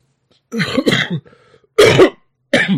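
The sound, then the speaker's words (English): Several loud coughs in quick succession, harsh throaty bursts separated by short pauses, with a faint low vocal murmur between them. “My cough, my inner, right? The cough for change me. Oh, excuse me.”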